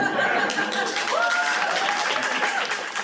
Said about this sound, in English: So one of the things that I wanted to say is, in case you couldn't tell from the cheering crowd, a lot of people want to hear about Ohlone history.